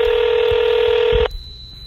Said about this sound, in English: Now we're drunk dialing the producer, the executive producer of Jersey Shore, Sally Ann Salzano.